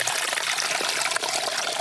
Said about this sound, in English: He walks past a massive bluff overhang from which piped fresh, crystal cold spring water flows.